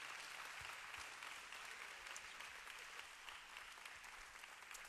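A crowd at a church service at Christ Chapel applauds the band steadily, with dense overlapping claps sustained at an even level for the whole stretch and no voices breaking through.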